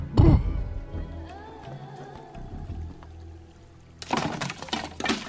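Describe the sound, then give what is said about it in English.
A sudden splash opens, followed by low creaking and groaning tones, then near the end a loud, turbulent burst of rushing, gushing water pours into a boat through a 4-foot gash under the waterline. “Must be a 4-foot gash under the waterline. We're filling up with water rather swiftly.”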